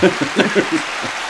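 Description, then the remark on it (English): A short burst of applause sound effect, a crowd clapping in a dense, crackling patter that swells briefly and then thins out, with no talking over it. “There's the applause.”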